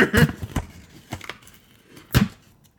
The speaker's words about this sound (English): And the winner is, so this is in different paper, so maybe I'll be able to open it better. And I am not.